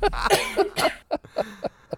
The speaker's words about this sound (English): I just choked on water. Yeah. There's so much coughing on my recording now.